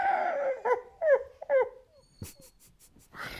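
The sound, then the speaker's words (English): A dog howls in a string of short, wavering yowls, pitch sliding up and down, followed by a few scattered knocks and rustling noises. “It's the dog!”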